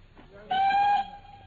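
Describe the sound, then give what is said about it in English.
A single short, steady train whistle blast sounds loud for about half a second, over a faint low rumble of a train at a suburban halt on the way to London. “We get halfway to London, and you suddenly insist on dragging me off the train at this suburban halt and not a refreshment room in sight.”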